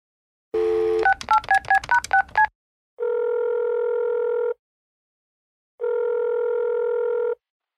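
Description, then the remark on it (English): A steady dial tone cuts into a quick run of about seven touch-tone beeps as the Mushroom Club's number from a leaflet is keyed in to call mushroom expert Wax Cap Jack, followed by two long ringback tones separated by silence. No one speaks. “I'll dial the number now.”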